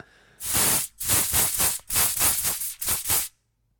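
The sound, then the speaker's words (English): An aerosol can sprays in several loud, hissing bursts, one long spray followed by shorter pulses, bright and breathy with a rattly edge, then stops abruptly. “It's an aerosol spray can.”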